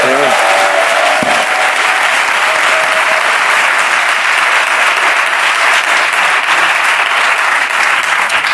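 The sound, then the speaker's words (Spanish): Steady, loud audience applause for Jorge Ponce fills the whole stretch, a dense continuous wash of many hands clapping, with a brief voice audible at the very start. “Un aplauso para Jorge Ponce.”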